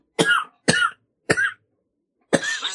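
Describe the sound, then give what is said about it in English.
Four harsh coughs after taking a hit from a ceramic pipe, in a rough rhythm, three quick ones followed by a pause and a final longer, rattling cough, with no talking. “I'm only coughing because I tried talking too quickly after taking the hit, but yeah, my lungs are probably like asphalt.”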